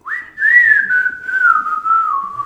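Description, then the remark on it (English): A clear whistled melody from an animated film, one sustained wavering line gliding gently downward with small pitch bends, played alone with no voices or other sounds. “it's the cartoon Robin Hood. Yeah. And the whistling.”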